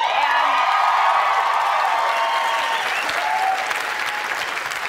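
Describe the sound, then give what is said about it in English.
Sustained, loud applause from a large studio audience, a dense steady clatter of many hands clapping with a few scattered whoops, holding strong throughout before easing slightly at the end. “It's my first applause break and my first laugh.”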